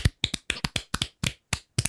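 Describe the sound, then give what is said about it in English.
A few people clap their hands in a short, uneven burst of sharp, crisp claps, some landing almost together in quick pairs, with no talking, clapping to close out a ranking bracket. “And as we do at the end of every bracket, we're going to clap it out.”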